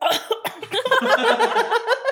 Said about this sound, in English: Are you alright? You know what? It's 4:20 and I'm not even smoking and I'm already coughing.